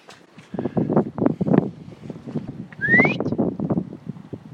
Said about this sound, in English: Come on. Okay. I'm not a loud whistler. If you thought that was loud, I guarantee.